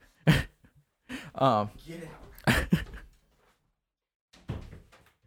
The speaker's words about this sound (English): She came back. She just opened the door.